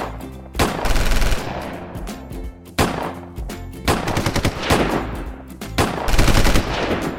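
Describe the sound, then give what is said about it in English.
Loud bursts of rapid gunfire in three main volleys, each a dense, sharp crackle of shots with brief pauses between, no voices. “Take a gun and defend yourself!”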